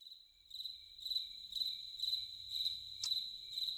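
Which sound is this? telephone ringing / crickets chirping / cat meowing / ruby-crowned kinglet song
crickets chirping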